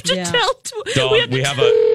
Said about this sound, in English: We have another phone call coming in.